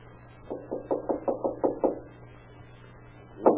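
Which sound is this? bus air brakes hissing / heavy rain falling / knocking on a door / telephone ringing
knocking on a door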